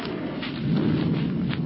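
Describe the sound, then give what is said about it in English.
A low, steady rumble of thunder follows a flash of lightning, rolling on without pause, swelling slightly partway through and staying fairly loud, with no voices over it. “Soon the thunder god speak.”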